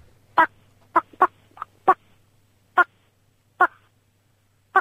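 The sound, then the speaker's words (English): A radio phone-in caller imitates a bird with a string of about seven harsh, squawking calls in an uneven rhythm, each short and loud, over a faint low hum with no talking. “I suspect bird impressions is the order of the day.”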